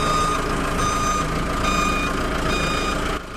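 A truck's reversing alarm sounds four steady, high-pitched beeps at an even pace over a constant low engine rumble, with no one speaking.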